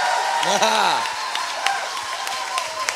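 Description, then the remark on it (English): An audience at a church service in the United States claps its hands for Jesus in a steady, noisy wash with scattered sharper claps, while voices shout and whoop loudly over the top. “Give Jesus a great big hand clap all over this place.”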